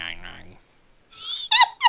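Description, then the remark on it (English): A voice imitates the cartoon dog from Two Stupid Dogs gnawing on a unicorn horn: a couple of nasal, whiny syllables, a thin high squeal, then two short squeaky bursts, fairly loud with no other sounds. “You remember on Two Stupid Dogs when he was gnawing on like the unicorn horn or whatever, and he would make that nyan nyan nyan nyan nyan nyan.”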